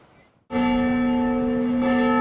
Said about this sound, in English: The bells have been ringing at the Mission for more than two centuries.